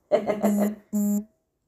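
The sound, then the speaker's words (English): A phone notification from a Ring camera, signalling someone at the door, sounds as two buzzy electronic tones, a longer wavering one followed by a shorter steady one, fairly loud and mid-pitched, with no talking. “I got a little notification. Someone's at the door, but I don't.”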